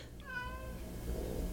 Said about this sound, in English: There's my cat meowing in the background.